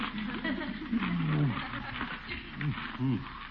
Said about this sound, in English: What's that? Is that you, Leroy? No. Oh, a cat.